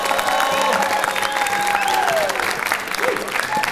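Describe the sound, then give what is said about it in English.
Steady applause sound effect from a crowd fills the whole stretch, dense and continuous clapping with some whistles and cheers rising above it, fairly loud. “We brought in the applause instead of the slurp.”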